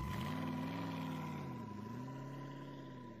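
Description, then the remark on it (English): A car engine hums steadily and rises slightly as the vehicle pulls away from a house, then settles into a smooth, fading drone. A constant high tone runs underneath. No one speaks. “I stumbled into my car and glanced back at the house as I pulled away.”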